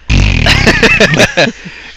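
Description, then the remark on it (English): A voice imitates a horse by flapping the lips, a loud buzzing, sputtering burst lasting over a second, with choppy pulses before trailing off into quieter breathy noise. “But you sound more like a horse. Yeah, that's just lip flapping.”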